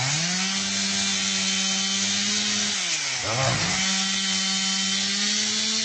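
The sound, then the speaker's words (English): A chainsaw cuts into virgin forest, roaring steadily, its engine pitch dropping briefly midway as it bogs into the wood before revving back up. No voices are heard. “We're sacrificing virgin forest to the chainsaw.”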